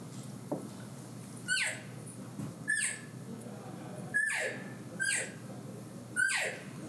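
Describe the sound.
A series of about five high, nasal elk cow mews, each sliding downward in pitch, repeated at roughly one-second intervals, clear with no talking, made by a hunter calling as an elk cow.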